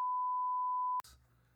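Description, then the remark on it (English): A steady, loud one-second censor bleep tone that cuts off abruptly, followed by a brief low hum and faint room noise. “We can beep it out”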